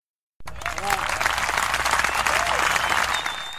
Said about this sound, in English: Laker Nation, this team deserves a round of applause.